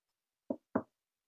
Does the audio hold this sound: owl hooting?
no